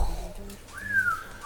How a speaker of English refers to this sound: Everyone in here can whistle